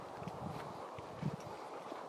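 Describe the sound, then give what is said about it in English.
Hooves of three horses clip-clopping on a path, a handful of soft, uneven hoof beats over steady outdoor background noise. “The day we met 3 horses on the path.”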